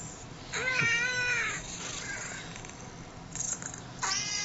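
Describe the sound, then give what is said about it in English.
A cat meows several times, played from a sound button: a long, wavering meow, then a softer short one and a final mew, sounding slightly thin, with no talking. “Yeah, I know it's a cat.”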